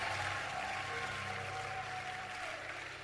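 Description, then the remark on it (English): A church audience claps together as a clap offering to Jesus, a dense, steady wash of applause that holds at an even loudness for about three seconds, with a faint sustained low tone running underneath. “Come on, give a big clap offering to Jesus.”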